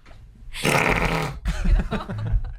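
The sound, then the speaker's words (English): A loud, raspy fart rips out for nearly a second, then breaks into a longer sputtering, bubbly stretch, with no talking over it. “I've got really bad gas.”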